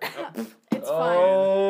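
A few short, throaty coughs close to the mic, then a sharper burst that trails into a long, sustained vocal sound.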